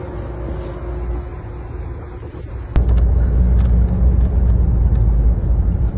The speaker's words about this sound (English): Hey, this is the doggy bus.